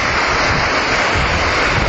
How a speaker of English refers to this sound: It's a very windy day, so I'm not sure how much you'll be able to enjoy what I'm hearing. And it's also just started to rain.